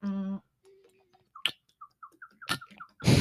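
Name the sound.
gulping a drink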